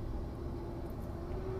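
A steady, low engine hum fills the inside of a car being driven, a constant rumble with a faint droning tone running through it at an even level, with no voices.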